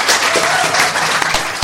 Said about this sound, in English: So let's give Pedro a big round of applause.